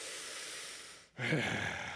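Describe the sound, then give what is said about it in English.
Someone breathes heavily and raggedly: a long airy exhale, a brief pause, then a louder, rougher breath, a person acting out labored panting as if dying while lying on the ground during a play-fight game. “And then every time we follow the same scenario and they love it, I'll start breathing really hard, right? When you're laying on the ground.”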